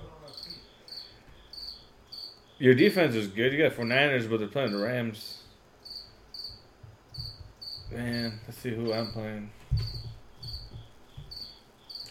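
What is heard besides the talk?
cricket chirping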